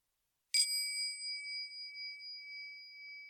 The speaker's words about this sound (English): Well, we could maybe ring the doorbell and see if the baker answers, and perhaps he'll tell us why he ran out of flour.